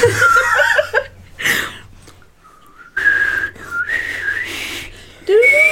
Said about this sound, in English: I can't whistle anymore because of my braces.